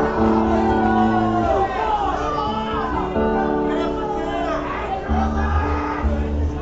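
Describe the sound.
An audience member at a concert shouts out loudly from within a noisy crowd, requesting a song over a continuous background of cheering and babble that fills the whole stretch.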